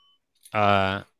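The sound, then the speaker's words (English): A single bell ring: one loud, steady, bright tone lasting about half a second before cutting off abruptly, with no one talking over it. “I'm gonna give you a bell.”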